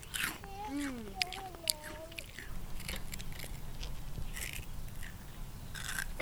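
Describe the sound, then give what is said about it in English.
Crisp crunches of someone biting into and chewing a crispy fried flower fritter of fried dough with flowers and orange, irregular crackly bites repeating throughout, with a brief hummed vocal sound near the start. “Melt in your mouth crunch.”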